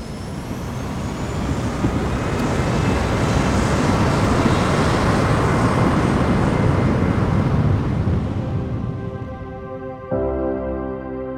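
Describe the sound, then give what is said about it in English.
A loud, sustained roar of airplane engines powering up for takeoff, heard from inside the cabin, settling near the end into a lower droning hum with a steady tonal whine. “Flight attendants, please prepare for takeoff.”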